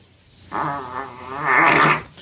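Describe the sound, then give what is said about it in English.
A fart, two buzzy, sputtering bursts with a wavering pitch, moderately loud, the second longer and slightly louder than the first, with no talking. “He laughs at his own farts too.”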